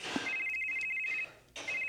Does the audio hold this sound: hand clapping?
no